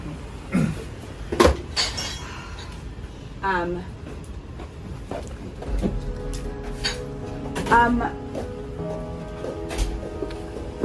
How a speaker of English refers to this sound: For a second, can you guys shut that door? Wait, someone shut that door.